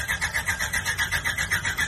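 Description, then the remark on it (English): A delivery truck packed with packages has its engine cranked: a rapid, steady rhythm of whirring starter pulses, moderately loud, with no voices. “I just took out some packages here because I went to go turn on the truck.”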